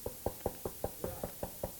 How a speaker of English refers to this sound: God is talking to your heart tonight. I'm knocking at the door.